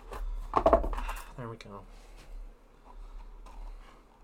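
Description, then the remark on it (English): Someone rummages through a drawer looking for scissors, metal utensils clattering and jangling in a brisk burst, followed by a couple of short squeaky scrapes and quieter shuffling. “Now I have to find fucking scissors.”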